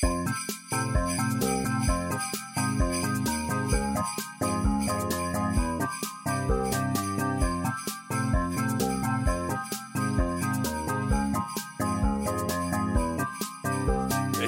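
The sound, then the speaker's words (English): Sleigh bells jingle steadily over a looping music track with a regular beat, the bright shimmering tinkle sitting on top of the melody throughout with no talking. “I might put some sleigh bells on over it as well.”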